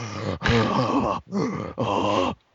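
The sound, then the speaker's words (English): Loud, heavy breathing picked up by a microphone, with a groaning, voiced edge, in four long drawn-out breaths separated by brief pauses, with no talking. “And his breathing is very, very loud, I should say.”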